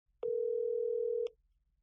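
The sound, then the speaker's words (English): A single steady electronic ringing tone from an outgoing phone call sounds for about a second, clear and alone, with faint clicks where it starts and stops. “and when I got confirmation, well, I had to immediately get her on the phone.”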